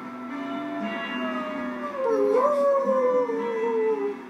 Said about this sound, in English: Uh-oh. Goddamn wolves.